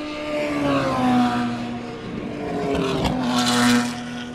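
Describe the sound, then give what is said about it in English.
A Peugeot race car, number 65, roars past at speed during qualifying, its loud, steady harmonic whine swelling as it draws near, then sweeping by with a rush of noise. No one is talking. “There goes one of the Avoras.”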